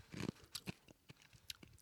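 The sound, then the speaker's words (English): Crunching and chewing of an ice cube, a series of sharp, brittle crunches in an uneven rhythm, fairly quiet with no talking. “I just swallowed an ice cube.”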